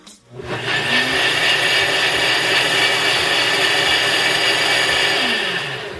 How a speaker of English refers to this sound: And I'm gonna say again, the loudness factor, it's not horrible. It's like any other blender. I bet the bigger blenders are louder.